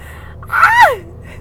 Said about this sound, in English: You guys heard that live and in action. A fucking semi-truck braked hard as hell.